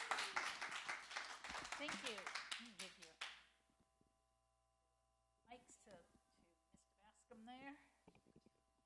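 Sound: audience round of applause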